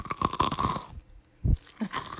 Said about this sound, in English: They listen to her suck on the pickle. Let me listen to you chew. Chew.